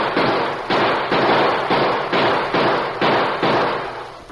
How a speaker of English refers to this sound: As soon as they opened fire, the Indians realized they had no protection from the bullets.